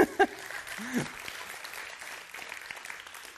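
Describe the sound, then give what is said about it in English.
A church audience claps together during worship in a steady, dense wash of applause that runs the whole time, with a few voices calling out over the clapping near the start. “It deserves a hand clap.”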